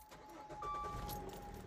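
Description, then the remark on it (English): A car starts up and idles with a steady low rumble, while a thin electronic chime tone rings faintly over the engine for a moment; the car is being started so it can be moved. “I just got to move my car.”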